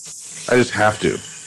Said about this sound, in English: Excuse me, I have to run the water for a second. Go ahead. What are you making coffee?